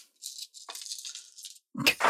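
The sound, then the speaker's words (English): A dice-rolling sound played from a phone app: a rattling clatter of dice, a quick jumble of light clicks tumbling for over a second, then a brief pause before a louder, fuller rattle at the end. No one speaks. “We want that sweet, sweet dice sound.”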